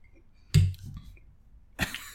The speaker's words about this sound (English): Sorry. Sorry, it took a big gulp of Bailey's.